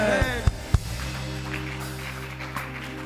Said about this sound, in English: You are clapping as if you are not sure.